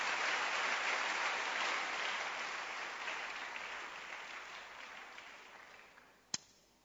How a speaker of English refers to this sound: Clap your hands for Jesus once again.